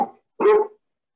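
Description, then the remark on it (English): A dog barks loudly: the tail of one bark at the very start, then a single full, harmonic bark, with no voices around it. “I don't like dogs who have opinions”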